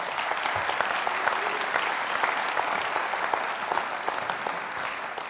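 An audience at King's Church claps steadily for about five seconds to welcome the morning's speakers, a dense, even patter of many hands at a consistent moderate loudness with no voices over it.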